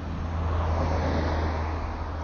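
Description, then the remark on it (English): A car drives along a road, its steady engine rumble and tire roar holding fairly loud and even throughout, with no voices. “Oh, there's another car coming.”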